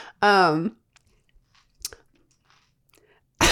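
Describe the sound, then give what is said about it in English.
Close-up crunching from someone biting into and chewing a crisp frozen snack with a hard, crunchy outer layer, a few sharp, scattered crunches right at the microphone, preceded by a short voiced murmur. “…, you need to chew away from your mic.”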